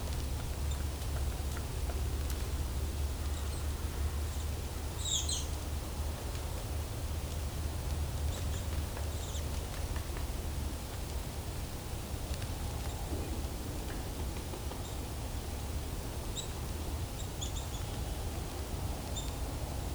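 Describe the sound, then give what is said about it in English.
Sparse, high chirping calls of a nuthatch in a mixed flock of robins, chickadees, kinglets, woodpeckers and creepers, faint, repeating every few seconds over steady wind-like noise and low rumble outdoors. “Sounds like there's a nuthatch as well, too.”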